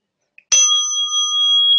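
A single meditation chime is struck once, ringing out clearly with a bright metallic attack and a long, steady sustained tone that hums on without fading. There is no talking.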